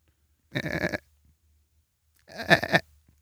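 A goat bleats twice, two short, wavering calls separated by a brief pause, the second slightly longer and louder, heard on their own with no talking.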